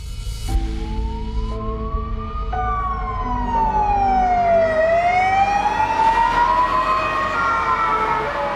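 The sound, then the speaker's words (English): An ambulance siren wails loudly as a patient is rushed to hospital, its tone sweeping slowly down and back up over a steady rumble of engine and traffic, with no one speaking. “He was rushed into hospital by ambulance.”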